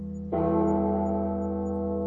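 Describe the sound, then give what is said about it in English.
A single heavy bell is struck once at the start of a rock song, loud, its deep metallic tone ringing on and slowly fading with rich overtones. No voices. “I think they do four bells.”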